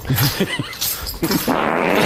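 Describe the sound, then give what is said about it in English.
A chair moving: a few short, low groaning creaks, then a longer rough scraping rasp that runs steadily to the end, moderately loud with no talking. “Chair that, moving. That one was real right there, I think so.”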